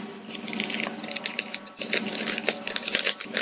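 Paper crackling and tearing as an envelope is opened to announce the winner of a mock award, a dense run of crisp, bright rustles and rips lasting a few seconds with no talking.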